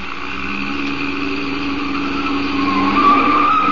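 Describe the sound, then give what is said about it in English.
A chauffeur-driven car takes a corner fast on two wheels, its tires letting out a loud, sustained squeal over the steady roar of the engine, the pitch climbing toward the end. “You turn that corner on two wheels.”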